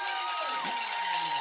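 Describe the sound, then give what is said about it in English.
A big home crowd at a football game roars and cheers after Tavion Hall's kick return to the 32-yard line, a steady, loud wash of voices, with scattered shouts and whoops rising above the sustained noise. “You can hear it gave this home crowd something to cheer for.”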